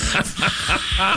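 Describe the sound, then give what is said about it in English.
A person imitates a cat's hiss with a quick series of about four breathy, sharp hissing bursts, each carrying a faint voiced rasp underneath. “Are you hissing at me”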